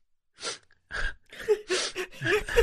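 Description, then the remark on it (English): A voice imitates the sniffling of a crying cinema audience at the end of a film when Iron Man died, making a series of about six short, breathy, airy sniffs that come faster toward the end, moderately loud with no words spoken. “But then at the end when the Iron Man died, everybody, the whole cinema got kind of quiet and then you heard this sniffling like...”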